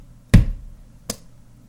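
Two sharp knocks on a wall, the first heavy and booming with a deep thud, the second lighter and quicker, spaced under a second apart with quiet in between.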